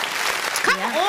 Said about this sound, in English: Come on, hand clap.